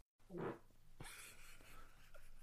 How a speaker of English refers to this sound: I'm sorry. I've had gas this whole fucking time. I can't help it.